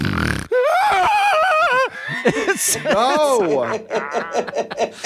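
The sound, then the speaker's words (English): Someone vocally imitates a man's snore, a loud imitation that turns into a high, wavering, screechy exhale and then breaks into chuckling laughter. “Wait, you have to do the snore for us.”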